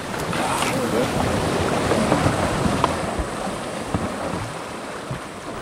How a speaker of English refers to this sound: All right, push. We're off down the Petbury River, which tumbles and meanders through dense rainforests.